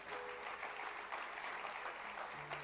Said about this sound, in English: Clap your hands for her.